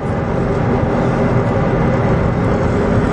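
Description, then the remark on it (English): A McLaren sports car engine drones loudly and steadily from inside the cabin during a quick speed run in sport mode, a dense low rumble with road noise that holds at an even level throughout, with no voices. “Alrighty, we're back in the McLaren for a quick little speed run here.”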